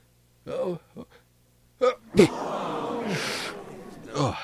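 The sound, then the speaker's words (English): A short voiced sound, then a sharp sneeze bursts out partway through a long, rushing nose blow that hisses on for about two seconds before a final snuffly breath. “Right in the middle of blowing my nose, it sneezed.”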